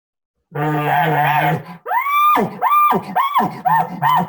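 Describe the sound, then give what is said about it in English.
A voice imitates an elk: a low, buzzing, rough grunt lasting about a second, followed by four short, high, squealing yelps in quick succession. “That they say that that's the grunt, right?”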